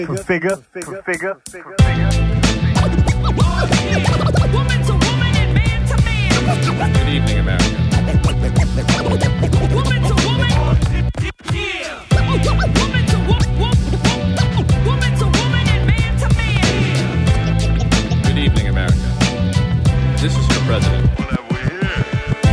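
A hip hop track from a music group plays loudly and continuously, with a steady thumping bass line and rapped vocals over it, broken by one brief pause midway.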